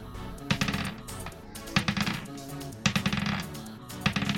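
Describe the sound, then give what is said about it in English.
A handful of dice clatter and rattle across a hard surface in several quick bursts, sharp clicky impacts tumbling over each other, moderately loud with no talking, rolled for a creature's attack in a tabletop game. “Oh, God, that's a lot of dice.”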